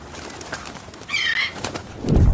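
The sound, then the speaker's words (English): A bird squawks once in a short, harsh burst, played back over faint background noise, followed by a low rumbling thump at the very end. “Yes, let's play that bird.”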